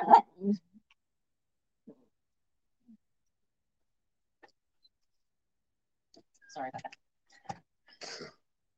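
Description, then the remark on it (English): A chihuahua gives a couple of sharp barks, falls mostly quiet with faint scattered noises, then lets out a cluster of whimpering yelps and whines near the end. “Hey, we're live right now. That means quiet.”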